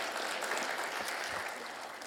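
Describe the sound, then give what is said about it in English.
A crowd at a church service claps steadily, a dense wash of many hands at moderate volume, sustained for the full couple of seconds without any voices on top. “See, you give him a round of applause.”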